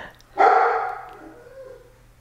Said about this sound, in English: Jill's dog is barking